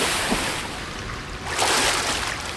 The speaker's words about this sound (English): I take another step, but the seabed shelves suddenly into deeper water, and I slip, submerging myself completely.